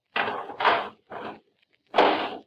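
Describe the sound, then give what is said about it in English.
A garbage can lid is fitted on with four scraping metallic clatters in quick succession, the last one slightly louder, with no voices present. “Okay, put the lid on.”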